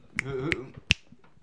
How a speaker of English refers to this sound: Hey, you get the finger snap from Death Poetry.